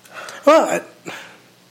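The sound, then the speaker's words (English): A person imitates a barking dog with two quick, throaty barks, the first loud and sharp and the second softer, with no other talking. “I mean, maybe if I started barking at people, they'd just think that I'm a psycho.”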